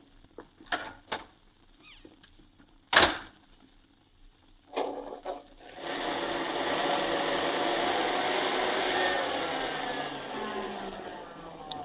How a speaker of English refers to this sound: Well, then I'll pull out the car.